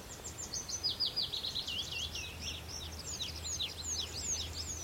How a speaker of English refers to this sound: Yeah, it's tree pipits. It's hard to pick them out, but they're kind of more rapid. Sort of, I think they're a lovely song, tree pipit.